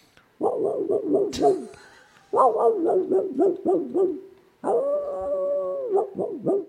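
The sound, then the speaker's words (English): A hound in Kansas bays in three drawn-out bursts, each a rapid string of wavering, yodeling howls, coming from some distance away with short pauses between. “No, it's a hound in the distance.”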